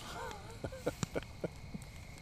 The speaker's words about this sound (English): And you know, I tell you, the more we sit here and talk, the more I appreciate this little fire pit.